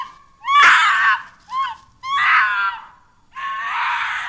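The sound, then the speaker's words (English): A shrill, wavering scream with an eerie, half-human, half-animal quality rises in several bursts through the evening silence among thick pines, loud, each cry strained and harmonic-rich, with brief gaps of quiet between. “surrounded by thick pines, slapping mosquitoes with one hand, holding their wine glasses in the other, calmly talking about the day's finds, as an eerie scream, half human, half animal, cuts through the evening silence.”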